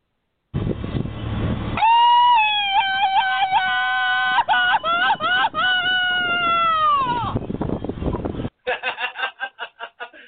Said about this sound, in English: do me a favor and hit that Mexican yell.